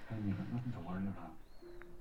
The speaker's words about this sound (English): What is that? Can you hear that? That is a bird. A big fat bird.